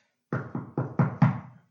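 Five firm knocks on what sounds like a wooden door, evenly spaced in a quick steady rhythm, growing slightly louder toward the end, with the last one briefly ringing out.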